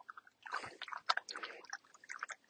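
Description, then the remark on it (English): A dog, Wolfie, laps water from the channel of a travel water bottle with quick, wet, irregular slurps and splashes, the soft smacking sounds coming in uneven bursts throughout, fairly quiet and with no voices. “Still lapping it. Still thirsty.”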